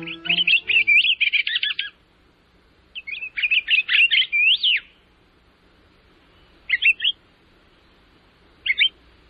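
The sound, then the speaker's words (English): Clear, whistled calls of a pine grosbeak (Pinicola enucleator): two longer warbling phrases, then two short separate notes, with no voices and a quiet background. “Piney Cola is the genus, and a nucleator is the species in the scientific name of today's Talkin' Birds featured feathered friend”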